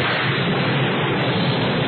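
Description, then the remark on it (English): Hard, driving rain pours down in a loud, unbroken hiss for the whole clip, with a low rumble of thunder beneath the downpour. No voices are heard. “And leaving the sun-kissed coast, the winged warrior searched for quick shelter against the hard driving rain.”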